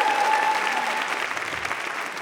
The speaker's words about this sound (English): Let's get a round of applause just for being here this evening, for making it out.